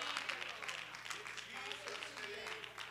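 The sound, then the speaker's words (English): An audience at a worship service clapping their hands to the Lord in a dense, continuous patter of many overlapping claps, steady in loudness throughout, with faint voices mixed underneath. “Clap your hands to the Lord and love him right now.”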